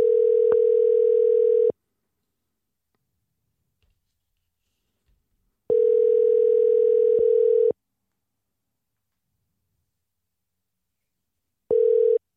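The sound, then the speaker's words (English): A telephone ringback tone while calling a paper cut artist: three steady buzzing rings, each about two seconds long with roughly four seconds of silence between them. A couple of faint clicks fall in one gap, and no one speaks. “Let's give him a call.”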